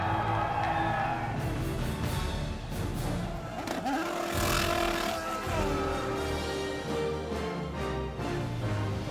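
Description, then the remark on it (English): A large crowd at the Indianapolis Motor Speedway roars and cheers steadily as Elio Castroneves wins the Indianapolis 500, a loud, dense wash of shouts and whoops. Engine-like drones and tonal hums run through it without letting up. “I mean, this crowd is unbelievable.”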